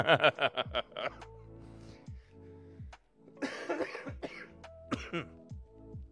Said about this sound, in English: I can't get too excitable, or else my cough will return with a vengeance.